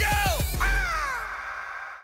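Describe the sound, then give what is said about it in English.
An eagle in the sky cries: a few quick harsh notes break into one long, loud, descending screech that rings out and fades over about two seconds. No one speaks. “But then he's suddenly distracted by an eagle in the sky.”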